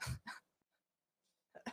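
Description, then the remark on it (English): Quick, breathy sniffs: two sharp inhales, a pause, then another pair, as someone mimes smelling a flower. No one speaks. “And then you smell the flower. Good stuff. That's a thing. Sniff, sniff.”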